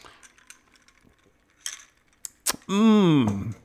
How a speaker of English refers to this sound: I'm sorry, you're just going to have to deal with the jingling of the ice cubes and the metallic straw in my cup. Because that's what we're going to do tonight.